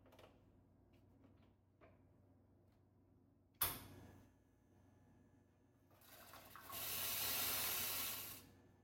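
A two-boiler espresso machine's steam wand hisses as it steams milk in a cup, injecting air and heating it: a sharp burst of steam, a lower rumbling stretch, then a loud, steady airy roar lasting a few seconds before cutting off. No one speaks.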